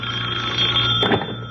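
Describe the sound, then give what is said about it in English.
A telephone rings at night with a steady electric bell tone, fairly loud, over a low background hum; no one speaks during it. “Let her wait here in the hall, dear, while I answer the phone.”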